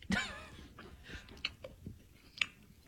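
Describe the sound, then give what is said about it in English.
Wet chewing of a piece of carrot cake, something soft with a few sharper crunchy bites and small mouth clicks, irregular and fairly quiet, with no talking. “It's not the best one I have, but, you know, if you're in a rush and you want a nice piece of carrot cake, this will do.”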